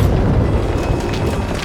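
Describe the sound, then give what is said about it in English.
Heavy runaway coal cars, pushing the engine Percy along the track, come off the tracks and crash: a loud, deep, continuous rumble that holds steady throughout, with faint scraping and clattering bursts rising over it in the second half. No voices. “Then Percy and his coal cars came off the tracks.”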